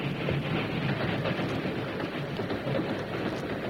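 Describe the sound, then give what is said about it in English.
A train with mule cars attached climbs a grade along the rails, a dense, continuous roar of wheels and machinery that stays loud throughout, with no voices over it. “Once over this grade, the train will make good time.”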